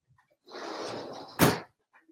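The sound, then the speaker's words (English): A door swings with a brief scraping rush of noise, then is shut with one solid, fairly loud thud. No voices, just faint quiet before and after. “I just leave the doors open. It's like born in a barn or something, leaving the doors wide open around here.”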